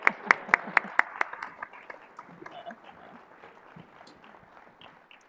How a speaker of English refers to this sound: But one more big round of applause for our panelists.